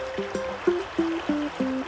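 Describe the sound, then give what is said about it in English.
The shallow, very cold Calore river flows steadily, with a soft continuous rush broken by regular, tonal gurgling pulses about three times a second. No voices are heard. “The name of the river is Calore, which means hot. So it was a very cold river with the wrong name.”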